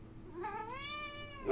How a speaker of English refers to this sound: We got a new guest. Yeah. Not dogs this time. We got cats.